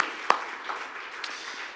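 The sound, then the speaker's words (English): An audience applauds the BCOT kids as they go, a steady dense patter of many hands clapping with a few sharper individual claps standing out, holding at an even moderate level throughout. “BCOT kids, and want to give them a big round of applause as they go.”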